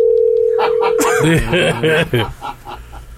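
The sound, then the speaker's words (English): A steady electronic ringback tone from an outgoing phone call to someone's uncle sounds clearly for just over a second, then stops as animated, sing-song voices take over. “No, it's already been too many rings.”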